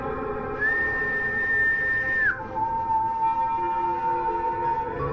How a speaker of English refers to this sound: Whistling. The second pitch, an octave below the first, just as Mr. Jenkins had described.